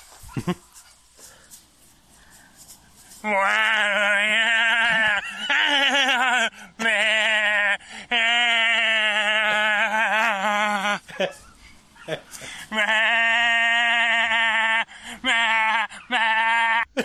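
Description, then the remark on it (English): A man's voice imitates a sheep in a short film titled Man Acting Like a Sheep, letting out several long, loud, wavering bleats in quick succession with short gaps between them, prominent. “We're going to do a guy acting like a sheep.”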